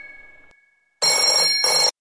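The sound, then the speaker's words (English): A telephone bell rings loudly in two quick jangling bursts, preceded by a faint fading electronic tone. No one speaks. “can you get the phone? It just keeps ringing.”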